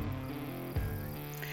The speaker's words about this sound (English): As you get up, you see that it is kind of pitch black, and you can hear the sound of wildlife, cicadas, and a lot of just bug activity.